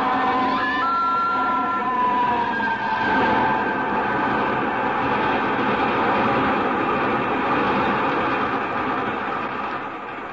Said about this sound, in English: Now there's another train coming the other way.